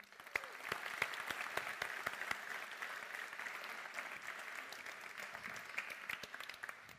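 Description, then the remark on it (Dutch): Steady audience applause welcoming journalist Eva Wiessing, dense clapping with many sharp individual claps, holding an even, moderate level throughout before trailing off at the very end. “Hartelijk applaus voor Eva Wiessing.”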